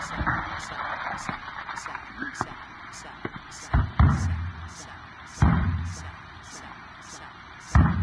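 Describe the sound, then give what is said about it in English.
Several heavy, dull bangs strike a radio set at irregular intervals, each a sharp thud, over a constant hissy background with a faint, steady high-pitched pulsing. “Bang it again.”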